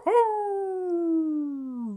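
A single long dog howl, loud, rising briefly at the start and then holding a steady, slowly falling tone for about two seconds with no talking.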